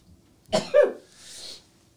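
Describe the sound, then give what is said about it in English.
A single sneeze breaks out in two quick bursts, the second sharper, then trails into a soft, airy hiss of breath. No one speaks around it. “Oh, I really got to sneeze.”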